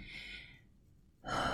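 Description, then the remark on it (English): A deep diaphragmatic breath from the belly, drawn in and let out, heard as two airy rushes with a brief pause between, the second one louder and fuller. No talking. “Like, the breath should be so deep that it comes from your diaphragm, your belly area.”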